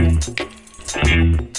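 Brief, bright jingles of car keys come in a few quick bursts, fairly loud, with a voice talking underneath and between them.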